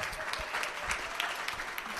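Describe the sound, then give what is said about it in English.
Steady audience applause for the guests of the Long Winter and Long Night show at the Polish Combatants Hall, a dense wash of many hands clapping at an even level for a couple of seconds, with no voices standing out. “And how about another round of applause for the guests on the show, Lee Reed, Jeremy Dutcher, Anupa Mistry.”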